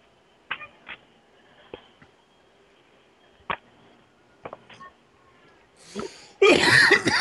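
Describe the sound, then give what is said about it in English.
A few faint clicks and taps, then a short sharp inhale followed by one loud sneeze bursting out right at the end. “Excuse me. Bless you.”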